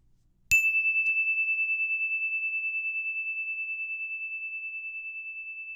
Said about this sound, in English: Well, soon, the story bell is going to ring.